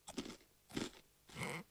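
Three crisp, crackling crunches of a twisty Frito corn chip being bitten and chewed, spaced unevenly over a couple of seconds with no talking.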